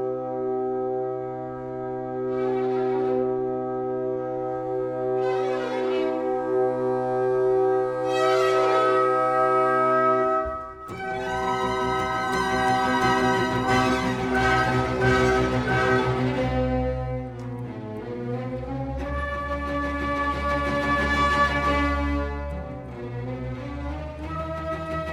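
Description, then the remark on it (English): The orchestral overture to an opera by Salieri plays with no talking, opening on sustained held chords and swelling notes before bursting into a fuller, busier passage of strings and winds that stays strong throughout. “So we're going to listen to the overture, just a little bit of it.”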